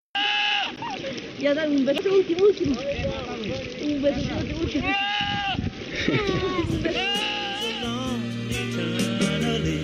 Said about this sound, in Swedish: som den här geten i den här låten. Jag får väl lägga in här så får lyssnarna höra kombinationen.